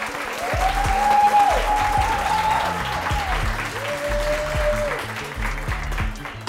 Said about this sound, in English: Thank you guys so much. Let's clap it up.